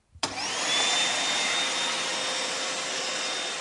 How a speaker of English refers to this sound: Okay, well, I guess the next thing to do is turn the hoover on.